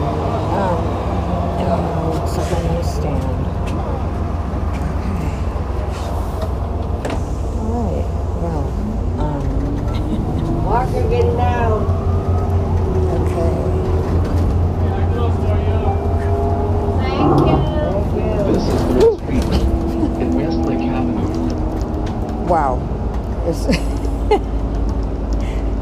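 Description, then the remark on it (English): Steady low engine rumble from inside a moving city bus taken home after work, with whining tones rising and falling as it accelerates and slows, and faint indistinct voices in the background. “I just got off the bus, and I see another bus coming, so I am going to take the bus instead of walking home.”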